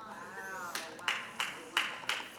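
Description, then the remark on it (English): A voice trails off, then a handful of sharp, evenly spaced claps ring out, about five in a steady rhythm, sparse rather than full applause. “Yeah, I didn't think no one was going to clap, right?”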